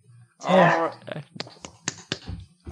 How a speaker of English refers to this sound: Clapping, I like this.